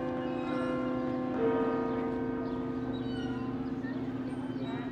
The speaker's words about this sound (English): And then I could hear the church bells ringing twice a day. I always loved hearing those church bells because they were the same church bells that my grandmother and her siblings and my grandfather and his siblings heard as well.